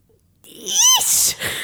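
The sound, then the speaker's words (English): After a brief silence, a voice imitates a girl's single loud sneeze: a high, squeaky rising wail that breaks into a sharp, hissing burst, heard alone. “She sneezed like this.”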